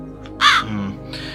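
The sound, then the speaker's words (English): A crow on a fence gives a loud, harsh caw, followed about half a second later by a second, softer caw, with no talking. “Right, where's the crow? Crow is... on fence.”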